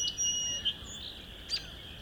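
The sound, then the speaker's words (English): A song sparrow sings softly right in front of the listener late in the day, about half an hour before sunset under an overcast sky: a few thin high notes and brief chirps spaced out over a steady, faint high-pitched drone in the background. “This song sparrow is right in front of me, but singing quietish.”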